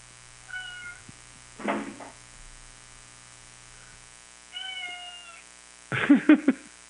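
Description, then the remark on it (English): A cat in a studio meows several times at moderate volume: two thin, tonal mews and two rougher, louder yowls, the last a quick stuttering cluster, over a faint steady background hum with no talking. “Is there a cat meowing?”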